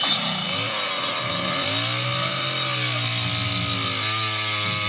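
chainsaw starting up

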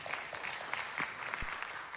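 audience applause

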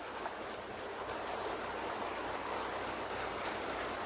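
rain falling

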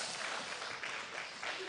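audience clapping

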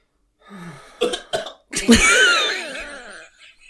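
deliberate coughing

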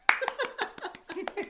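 clapping

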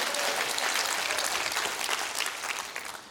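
audience clapping

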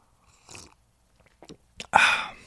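sipping coffee

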